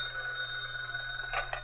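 A telephone in an office rings after midnight with a steady, bright bell tone, fairly loud, over a low electrical hum, with no one speaking.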